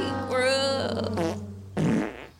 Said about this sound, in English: Those fart sounds were perfect for that.